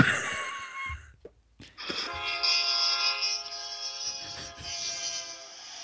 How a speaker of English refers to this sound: What do you think that is? Car. Incorrect. It's Super Train.